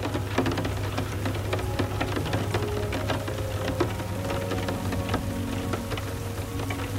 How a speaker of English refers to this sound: Even though it's still raining out, it looks like Big Bird's emotional weather has cleared up.